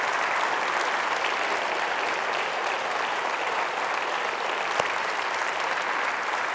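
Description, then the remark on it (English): A large audience, some of them standing, applauds continuously, a dense, steady wash of clapping that holds at an even loudness for several seconds, with no voices standing out above it. “Some of y'all are standing clapping because y'all think, well, if I do that, he'll be quiet, you know, we'll go.”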